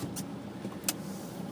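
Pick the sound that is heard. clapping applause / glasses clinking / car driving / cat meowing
car driving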